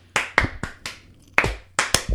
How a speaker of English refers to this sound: So we got four. Everyone clap. Woo. Please clap on the bus or wherever you are.